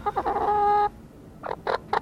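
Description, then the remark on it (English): Chickens clucking, a sustained squawking call followed by a quick series of short, punchy clucks, with no one speaking. “They buck, you know, buck, buck, buck, in the morning in particular.”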